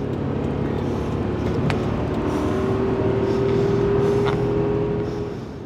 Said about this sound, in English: he guns the engine and passes a slower car on the left.